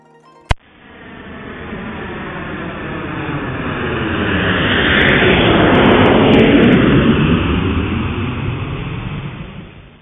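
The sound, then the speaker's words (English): Sped-up roar of an airplane flying to India, a dense rushing drone that swells steadily to a loud peak around the middle with sweeping pitch shifts, then gradually fades; a sharp click at the start, no voices. “Let's get on the plane and speed this thing up because we don't want you guys sitting here for hours and hours while we just sit in a plane.”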